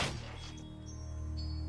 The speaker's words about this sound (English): Silence follows before the door's hit with a force that sends me against the wall. I try to get a hold of myself even though my ears are ringing from the blast.